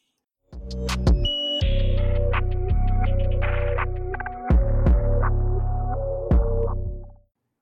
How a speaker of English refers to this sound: Oh, sorry. I thought it was my mic and I was like, what is this echo?